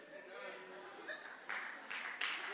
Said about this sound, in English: But you're getting excited about clapping, but I haven't actually given you the really good news yet.